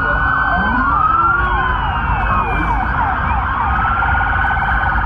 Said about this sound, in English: So here's what the scene sounded like from one of the only videos, really, that we have from that night. Here's what this actually sounded like that night. Listen to all of these sirens.